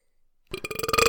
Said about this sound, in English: Okay, no more belching. Well, I gotta get it out.